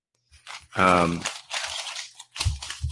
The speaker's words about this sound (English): Shuffling some papers over here.